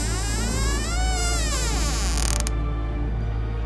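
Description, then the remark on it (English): The door of a room slowly creaks open as an intruder comes in, with a long, wavering groan that bends up and down in pitch, ending in a sharp click after about two and a half seconds before falling quiet. “I held my breath and feigned sleep as the door creaked open.”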